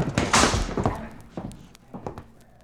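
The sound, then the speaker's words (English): A heavy metal vault door slams shut with a loud boom, followed by a few fainter clunks and clicks as it settles and latches. “I'm going to shove them all into this vault and slam the door.”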